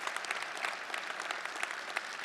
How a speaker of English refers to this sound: Thank you for parking cars. You should clap him for that.